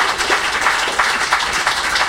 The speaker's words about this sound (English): Big round of applause for our secretary in the second row.